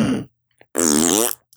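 A loud fart sound effect: a brief sputter, a short pause, then a longer buzzing, wavering blast lasting about half a second, with a tiny pop at the end.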